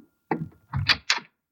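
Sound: door opening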